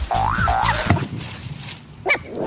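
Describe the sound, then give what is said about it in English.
A miniature schnauzer gives short, wavering howls that rise and dip in pitch, followed a moment later by a brief yelp-like cry, with no talking. “Mini schnauzers in a group are known to throw their heads back and howl like wolves.”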